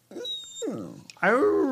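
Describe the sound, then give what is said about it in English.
A dog grumbles and growls in a few drawn-out vocal bursts, the last one loudest and most sustained, with rising and falling whiny tones. “Exhausted from a long day of sleeping and barking during my recordings?”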